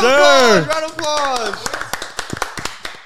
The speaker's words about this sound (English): Round of applause.